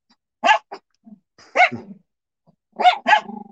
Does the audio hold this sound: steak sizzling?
no